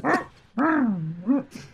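A dog on a film set during a bungee-cord slingshot stunt barks once sharply, then lets out a long, wavering whimpering whine and a shorter yelp, fairly loud, with no one talking.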